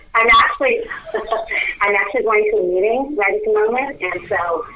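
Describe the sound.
A voice speaks steadily over a telephone line from inside an elevator, sounding thin, muffled and slightly echoey; the talking is continuous throughout.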